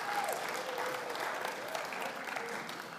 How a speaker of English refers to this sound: Big round of applause.